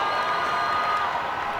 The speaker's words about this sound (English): Fourth and 2. Crowd making noise, which is not what the Redbird offense wants.